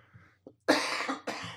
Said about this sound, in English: There we go. That's one cough. We'll see how many times I cough during this episode.